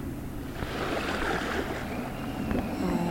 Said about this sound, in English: In the distance, you can see a few different boats. It looks like a relatively larger boat that might be a ferry coming in.